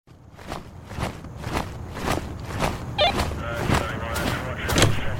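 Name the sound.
footsteps walking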